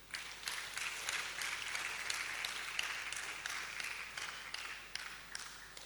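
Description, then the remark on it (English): An audience applauds steadily for several seconds, a dense, crisp patter of many hands clapping at an even loudness, fading only slightly toward the end, with no voices over it. An audience applauds young people acting out the disciples on the road to Emmaus. “Let's applaud them.”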